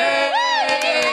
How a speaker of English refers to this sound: And then you're going to go funny and be like, but you have to get up and, like, take a bow or something so everyone can applaud.